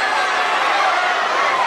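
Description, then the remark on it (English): A large crowd boos loudly and continuously, a dense wall of voices filling the whole moment with no letup, sounding like a packed arena reacting together as Ric Flair gets the count and wins the belt. “I mean, yeah, you can hear boos, but it feels like it was just kind of a clean victory.”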